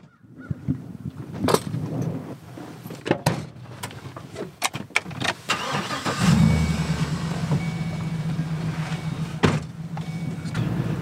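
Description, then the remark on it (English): Clunks and rattles as people get into one of Eden Cemetery's pickup trucks, like a door shutting and someone settling in, then the truck's engine turns over about halfway through and settles into a steady, rumbling idle as it pulls away. “For the next stop on our tour, Hakeem and I hop into one of Eden Cemetery's trucks.”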